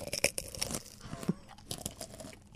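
Close-up crunchy chewing, with a rapid run of crisp crunches and bites up front, then softer irregular chewing and crinkly mouth sounds trailing off. No talking.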